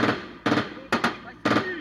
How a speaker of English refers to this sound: This leaked video from 2021 shows UN special forces exchanging gunfire with rebel militiamen.